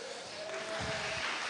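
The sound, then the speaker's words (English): A steady round of applause, a dense wash of many hands clapping that holds evenly for the whole moment, with a faint low hum underneath and no voices standing out. “So round of applause for her.”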